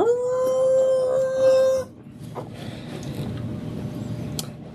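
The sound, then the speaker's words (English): A single long, steady howl, fairly loud, held for almost two seconds before cutting off, voiced by a person imitating a wolf, followed by a low rumbling background with faint scattered noises. “I howl in retort.”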